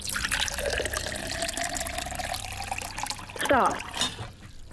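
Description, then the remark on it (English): Liquid pours steadily into a marked glass during a pouring game, a continuous gurgling stream whose pitch rises as the glass fills, with faint voices briefly heard toward the end. “Matthew, begin to pour.”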